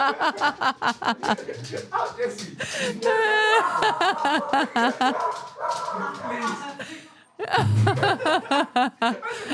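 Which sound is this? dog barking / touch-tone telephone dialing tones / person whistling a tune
dog barking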